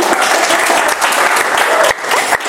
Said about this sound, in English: Okay, I'm going to breathe. Oh, it says pause for applause. Yay!